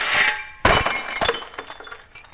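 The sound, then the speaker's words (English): A loud crash of breaking crockery at the start, followed by a clattering cascade of clinking, tinkling shards that gradually settles and fades out. “what about them dishes? Oh, blimey.”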